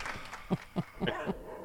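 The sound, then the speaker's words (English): A dog named Clyde barks about four times in a quick, even series, the barks fairly faint, with no one speaking over them. “I'm trying to do it in between barks.”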